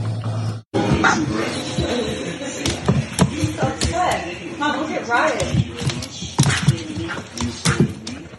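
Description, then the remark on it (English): A female Malinois dog barks and yips repeatedly, sharp irregular bursts throughout, with muffled voices and some knocking or handling noise underneath. “So then she has a spayed female Malinois and Inga is an intact female Malinois”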